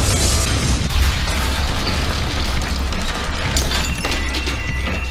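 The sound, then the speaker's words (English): A loud explosion in a building, heard from the 30th floor, roars with a deep, heavy rumble and a wash of crackling, shattering debris, sustained for several seconds without any voices. “We hear another explosion.”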